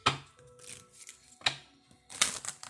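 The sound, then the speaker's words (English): Dry riffling bursts of a deck of jar cards being shuffled to get them ready for a draw, three quick crackling flurries with softer rustling and handling noise in between, no voices. “I'm just shuffling these, getting them ready.”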